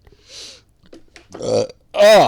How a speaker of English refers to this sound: God, that was gross. Why'd you burp into the microphone?